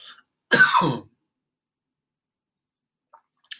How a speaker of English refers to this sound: This episode should be called How to Cough on the Microphone.